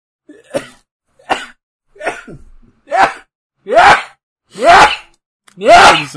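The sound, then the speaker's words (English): A run of seven sharp sneezes, evenly spaced and growing louder and harsher with each burst, with short silent pauses between them. “Bless you.”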